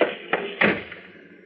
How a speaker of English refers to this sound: I never thought I'd have to resort to pulling a phony collision with a door, but I had to get rid of the chief somehow.